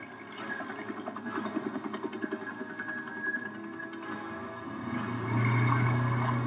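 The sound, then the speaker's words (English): A helicopter with 'engine' written on its side drones with a rapid, rhythmic thudding, then settles into a steadier, slightly louder hum toward the end. No voices are heard. “It says engine on the side of that chopper.”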